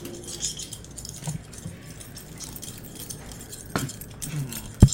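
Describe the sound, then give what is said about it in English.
Faint, scattered metallic rattling like silverware being jostled, soft clinks over a low background hiss, with a couple of sharper clanks near the end. “There is some slight rattling outside, almost as it sounds like someone's holding onto silverware and stolen goods.”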